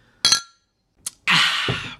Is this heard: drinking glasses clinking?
yes